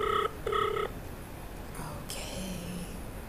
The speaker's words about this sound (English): Oh. Okay, it's ringing. I don't know if she's far away from my phone or what's going on.